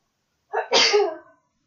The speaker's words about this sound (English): Yeah, but I just heard your sneeze.